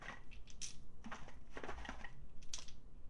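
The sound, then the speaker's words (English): Small plastic Crazy Bones toy figurines rattle and clatter as they are taken out of a dice box, in several irregular bursts, fairly quiet, with light scraping between the louder shakes and no talking. “I'm getting all these dumb crazy bones out of my dike box.”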